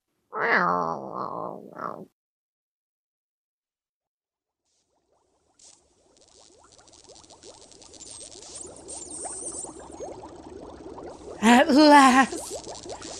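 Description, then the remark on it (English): A cat, Mr. F, lets out a drawn-out, wavering meow, then after a pause and a stretch of low, bubbling rustle, gives one more short, loud meow while being shooed out of the kitchen. “All right, now shoo. Out.”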